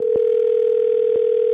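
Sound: telephone dial tone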